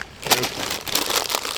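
Crisp packets being torn open and crinkled, a busy, bright rustling and crackling that runs continuously with sharp irregular bursts, fairly loud, with no one speaking over it.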